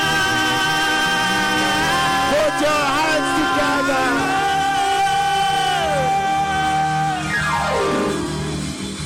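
An audience cheers and claps for the Lord loudly and without pause, high whoops and sliding shouts rising over a dense wall of voices and clapping, with one long call swooping downward near the end.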